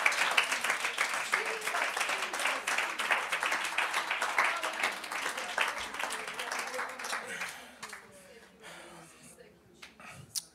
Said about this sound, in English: Come on, give these two great men a hand clap of praise. Praise the Lord.